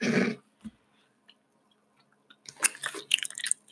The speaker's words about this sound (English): I hope you're watching, you're listening to this on the bus and you hear my chewing noises.